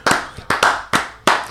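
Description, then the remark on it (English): A small group claps slowly in unison, four loud, slightly ragged claps that gradually quicken, each with a short ringing tail and no voices. “Yo, y'all slow clap sped up so fast.”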